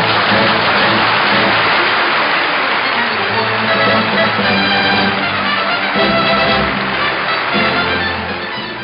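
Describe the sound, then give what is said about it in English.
Loud, thunderous applause from a large crowd, in a film scene where James Coburn pulls his finger out of a man's brain, roars continuously for several seconds, a dense wash of clapping that tapers off slightly at the very end. “That was James Coburn pulling his finger out of the guy's brain to thunderous applause.”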